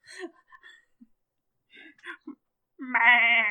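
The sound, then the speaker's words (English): A loud, wavering goat bleat rings out at the end, sustained, following a few brief voiced snippets and short murmurs. “Turn the guy into a goat.”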